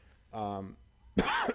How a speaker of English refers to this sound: I'm coughing. I'm fighting a cold